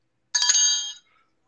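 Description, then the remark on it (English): A single bright bell ring with stacked metallic tones sounds alone, lasting under a second before fading out quickly into a faint ringing tail. “Ring the fucking bell.”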